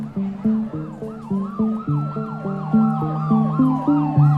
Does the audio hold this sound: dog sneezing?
no